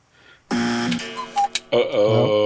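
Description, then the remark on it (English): A loud, harsh buzzer blares after a brief quiet moment, cuts out, then sounds again with a slightly wavering, warbling tone. “There's that darn buzzer again.”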